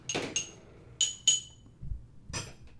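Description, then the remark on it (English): A heavy-duty, round, shallow coffee-slurping spoon strikes a glass about five times in an uneven rhythm, each bright clink leaving a short, high ringing tone before fading into quiet. “I'm going to clink them into the mic here. Yeah. You can kind of... Here's what one sounds like on a glass.”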